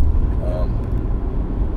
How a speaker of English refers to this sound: Bus. Come on, bus. Yes. Thank you for taking our kids to school, but Jesus Christ. You look empty.